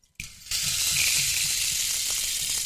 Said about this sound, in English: She gave us, actually, I think you have to look her up on Facebook. She gave us a hand-painted rain stick.